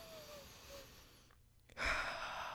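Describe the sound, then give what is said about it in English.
A deep, slow mindful breath drawn in softly, a brief pause, then a fuller, louder exhale rushing out, with no talking. “Mindful breathing.”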